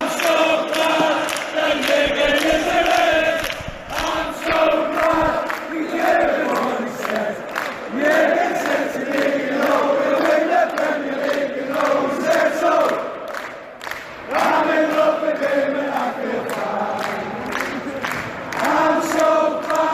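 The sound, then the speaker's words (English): A large football crowd at Anfield sings a chant for Jurgen Klopp in unison, a loud, sustained mass of voices rising and falling in a steady melodic rhythm for the whole stretch, with brief dips between phrases. “This is the song that they sing, that the crowd sings for Jurgen Klopp at Anfield.”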